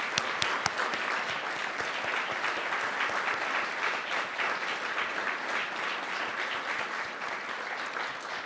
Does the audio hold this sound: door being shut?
no